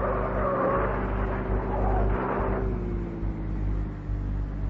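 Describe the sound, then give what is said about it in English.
A car engine roars steadily during a car chase on wet, slippery roads, its pitch climbing and easing as it revs over nearly five seconds of continuous, loud rumbling with no voices. “I run outside, grab a police car, and start chasing.”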